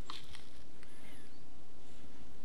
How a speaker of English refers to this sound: If you heard that whistle, that was a bird.